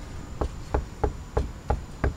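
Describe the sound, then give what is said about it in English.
Six firm knocks on the wooden front door of the Merchant's House Museum, in a steady, even rhythm, each a short dull thud with a solid low end, spaced about a third of a second apart, with no voices. “do you want to knock at the door?”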